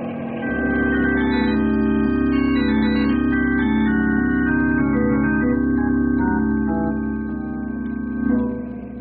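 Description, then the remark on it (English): A helicopter swooping and zooming around gives a loud, steady drone with a layered mechanical whine that wavers slightly in pitch, holding for several seconds before swelling briefly near the end. No one speaks. “I'm afraid of that there heliocopter. What's it swooping and zooming around here for?”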